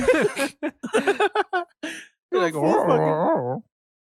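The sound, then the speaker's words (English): A person imitates a dog with a strange, warbling, whimpering vocal sound that wavers up and down in pitch. It is fairly loud, following a short burst of voiced sounds. “You're going to get a weird dog sound.”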